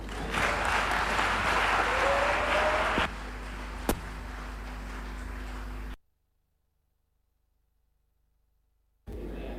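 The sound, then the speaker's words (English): An audience claps together in a dense burst of applause that thins and fades after a few seconds, followed by a sharp knock, then a sudden gap of silence. “Clap for them.”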